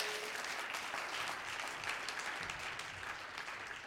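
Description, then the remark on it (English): An audience claps hands together to give God glory during worship, in a steady, dense burst of applause that stays loud and even throughout, many overlapping claps blending into a continuous crackling roar. “Clap your hands, give God glory.”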